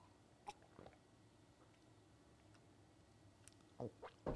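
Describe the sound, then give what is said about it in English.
Someone takes quiet sips of lemon water, with a couple of soft mouth clicks early on and a cluster of wet slurping gulps near the end; no talking. “Let's take a big sip of the lemon water.”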